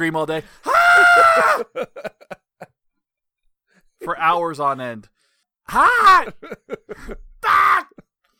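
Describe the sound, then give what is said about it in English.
A voice lets out exaggerated, strained groans and yelling cries from eating hot sauce on eggs, in several loud bursts with sliding pitch, separated by short pauses, and a few spoken words slip in between. “So you can, woo! I just scream all day.”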